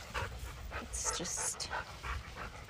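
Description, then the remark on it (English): A dog pants in quick, steady, rhythmic breaths after chasing a ball at a county park, several short huffs repeating without a break over a few seconds, with no one speaking. “sorry, there's a lot of panting going on here.”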